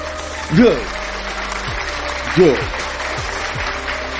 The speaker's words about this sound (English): Clap if you understand.